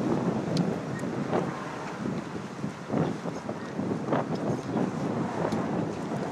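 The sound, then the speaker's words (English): Steady wind buffets the microphone outdoors in a neighborhood, a constant low rumble with gusty bursts and crackles that swell and ease throughout, fairly loud, with no talking. “Tell you what, it ain't too windy for me.”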